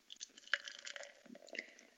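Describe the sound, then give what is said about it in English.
A Golden Road Brewing watermelon wheat ale pours into a glass, a continuous wet gurgle with crackling fizz and small splashes lasting about two seconds, fairly quiet, with no one talking. “Right, and the pour.”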